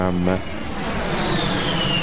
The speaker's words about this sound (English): What happened? A plane crashed into his house.